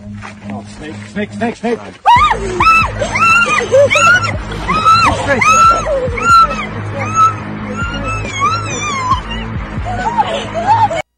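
A girl screams in fright as a fake snake, tied to her backpack by an almost invisible string, chases her in a prank on a trail: a string of loud, high-pitched, wavering shrieks that burst in after a quieter start and keep going nearly nonstop over a low background hum.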